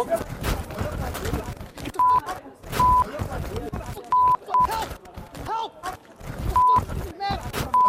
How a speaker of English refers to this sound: All right, so there's a scuffle. We're bleeping it out there. Things get ugly.